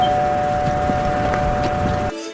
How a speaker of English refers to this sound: Okay, the doorbell rings and people are singing. What are those people called?